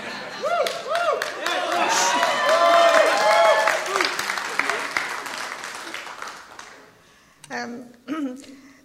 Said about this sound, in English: I know you clap because you know I don't like it.